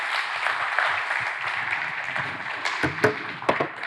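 A crowd breaks into sustained applause, a dense, steady wash of many hands clapping, with a few sharper individual claps standing out toward the end.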